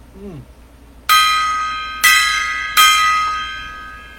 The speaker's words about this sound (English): The gong.